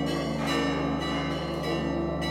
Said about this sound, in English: The bells are signaling a changing of the guard of sorts. The sepulchre is controlled by 5 different Christian sects, with varying rules for who oversees specific parts of the church.